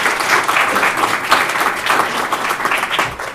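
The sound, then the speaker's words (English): Steady applause from an audience welcoming a guest speaker, a dense wash of many hands clapping at once, loud and sustained throughout with slight swells, no voices standing out. “So just as we get started, I want to invite everyone to give him a round of applause for being so great to be here with us today.”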